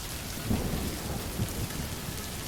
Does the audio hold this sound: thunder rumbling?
yes